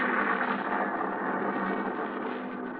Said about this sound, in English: Now, another storm.